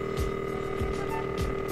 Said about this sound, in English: Is it ringing yet? Not yet. Okay. Oh, it's ringing. Oh, fantastic. Phone continues ringing.